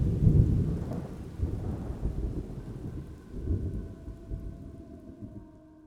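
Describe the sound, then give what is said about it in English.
Steady rain hisses alongside deep rolling thunder, loudest at the start, then gradually easing and thinning out as the storm fades, with no voices present. “The rain had ceased by the time that Maggie had awakened.”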